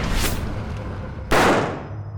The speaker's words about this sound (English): The man was dead before the smoke from the gunshot could clear.